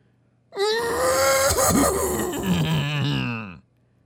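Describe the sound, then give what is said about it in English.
A person imitates a horse's neigh with one long, loud, quavering vocal whinny lasting about three seconds, starting high and sliding down in pitch with a rough, trembling tone. “For it, full-blown horse sound. Okay, this is my audition to be a horse.”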